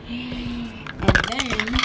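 A phone drops and clatters onto a hard surface while hair products are being applied, a sharp knock followed by a few quick rattling bounces, over a steady low hum.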